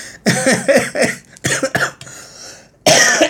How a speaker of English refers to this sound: I laughed so hard I coughed. I have to drink. Beer is a good cough suppressant, maybe.